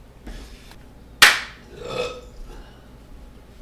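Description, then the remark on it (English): A single sharp hand clap cracks out, made to sync a video recording, followed about a second later by a rough, medium-length burp, then quiet room tone. “Just sync it with the burp.”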